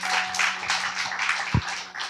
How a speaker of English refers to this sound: And I hope by then we will have the first episode of Ray Ray's Hot Shack ready for you guys. Oh yeah, you can applaud that.